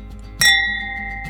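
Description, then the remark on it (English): A single bright clink of glasses touching in a toast, leaving a clear ringing tone that slowly fades, followed by a softer tap near the end over a quiet low hum. “And with that, I'm just going to say cheers until next time.”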